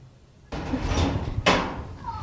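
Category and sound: household object, knocking on a door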